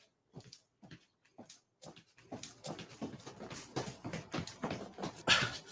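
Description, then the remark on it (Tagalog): Heavy, rapid panting, rhythmic breaths starting slow and spaced, then quickening and growing louder and more ragged, from someone winded after jumping rope out back. No talking. “Bakit hinihingal ka?”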